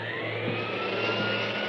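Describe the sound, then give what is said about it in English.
A vacuum cleaner runs steadily as a hotel desk clerk starts to vacuum, at a hotel on Pico just south of Flower. A loud continuous motor roar with a high whine that climbs slightly in pitch. No voices are heard. “I can't hear you over the vacuum.”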